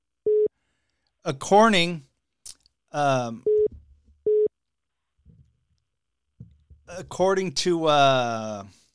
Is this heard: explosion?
no